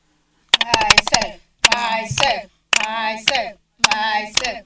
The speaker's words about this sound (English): Let's clap 5 times, stop, then clap 5 more times for ourselves.